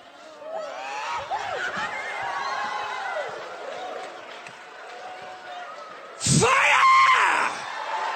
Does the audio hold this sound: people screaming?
yes